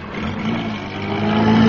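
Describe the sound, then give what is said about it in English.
A vehicle engine hums steadily and revs slightly higher as it drives around a corner into a narrow lane during a military exercise, a continuous low rumble that grows a little louder toward the end. “Jones, now be very careful how you drive around this next corner.”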